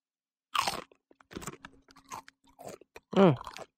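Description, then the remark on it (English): A sharp crunch of biting into a ranch-flavored tortilla chip made with Carolina Reaper peppers, followed by several softer, irregular chewing crunches, then a brief voiced murmur near the end. “Not as crunchy.”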